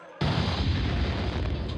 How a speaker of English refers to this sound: hear that explosion. I could feel it.